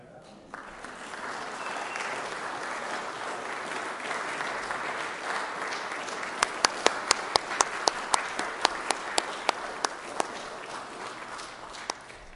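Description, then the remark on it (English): A church audience breaks into steady, sustained applause after voting to approve its next senior pastor, as he is invited in. The applause fills the whole clip, with a run of sharper, louder individual claps punching through the wash of clapping in the second half. “Now's the time to clap.”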